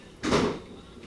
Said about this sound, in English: Why do they do that? They're just going to... Why do the kids slam the doors and stuff?